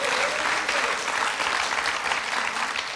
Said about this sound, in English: So are you ready to go? Put your hands together if you can clap and say, I'm ready to go.